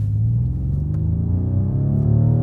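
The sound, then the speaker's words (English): A 624-horsepower Rolls-Royce Wraith engine revs steadily higher as the car accelerates, a loud, smooth deep rumble whose pitch climbs continuously over a couple of seconds with no one talking. “Okay, so what I'll do is I'll give our people a little bit of an experience. Of the engine sound? Of the engine sound. So this is obviously a Rolls-Royce.”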